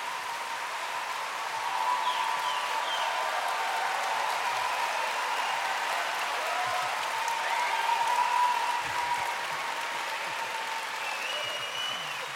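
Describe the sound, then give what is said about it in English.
An audience claps steadily and loudly for about twelve seconds, welcoming Ben Okri and Jeremy Corbyn to the stage, a dense, even wash of applause that holds its level throughout, with a few faint cheers riding on top. “Well, that sounds like a very hostile crowd.”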